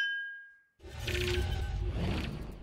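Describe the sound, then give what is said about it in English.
A single bright clink of glasses touched in a toast rings out and fades, followed by a burst of louder, muffled rustling and handling noise. “I will drink to that. Oh, there we go. Chiefs win, cover. Cheers, baby.”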